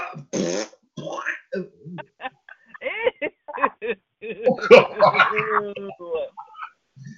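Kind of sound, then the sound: human body sound, fart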